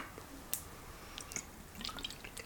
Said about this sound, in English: Oh my god, let me drink some water, bro.